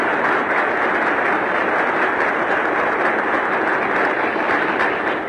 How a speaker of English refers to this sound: Let's all express to them our hand of applause.